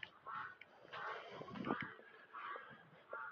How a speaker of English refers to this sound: Or is that a chicken? No, those are ducks. Those are ducks.